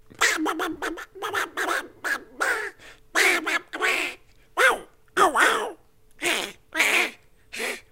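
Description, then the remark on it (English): A person does a raspy Donald Duck voice impression, spouting garbled, quacking speech in a rapid string of bursts with short pauses, fairly loud throughout. “This is Donald Duck walking down a dark alley.”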